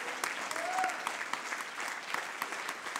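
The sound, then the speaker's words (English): A church audience at Truth Church applauds steadily in praise to the Lord, dense overlapping hand claps filling the space at moderate loudness, with a brief voice-like cry rising above the clapping partway through. “Would you clap your hands unto the Lord? Give him praise right now.”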